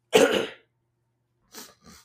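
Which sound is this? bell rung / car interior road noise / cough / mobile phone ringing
cough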